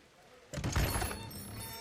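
A distant door bursts open with a sudden, heavy crash, its booming rumble hanging briefly before fading into a dull background hiss.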